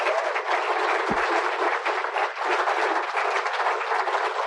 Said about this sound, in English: Those are the speakers that have gone before us, before me this evening, and I'd like you to give them all a big round of applause.